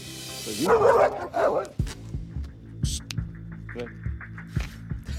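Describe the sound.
A dog, Leon, lunges at a cameraman, barking aggressively in a short, intense burst of two or three harsh, snarling barks, followed by lower rumbling noise and faint background voices.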